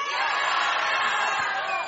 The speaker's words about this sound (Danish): Alle dem, der synes, at det der med at drille rødhåret, det er en rigtig dårlig idé, de råber. Og alle dem, der synes, det er fedt, og det må vi godt i dag, de råber, ja!